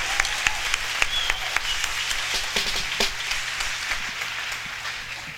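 crowd, audience round of applause

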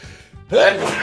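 human body sound, sneeze

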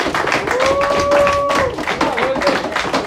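crowd, round of applause

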